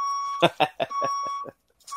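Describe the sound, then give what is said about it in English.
A voice mimics a reversing vehicle's warning beeps, about five quick, evenly spaced beeps over a steady high electronic tone, fairly loud, then a brief silence before the tone resumes. “Back it up. Yeah. What was that? Pull on the beep beep.”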